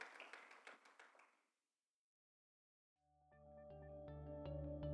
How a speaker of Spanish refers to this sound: Denle un fuerte aplauso a Cristo, hermanos. Give the Lord a strong clap offering.